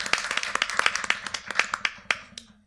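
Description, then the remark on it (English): Audience applause for a woman being introduced: a quick burst of sharp, crisp hand claps in an uneven patter, loud at first and thinning out toward the end, with no one talking. “Yeah, let's hear it for”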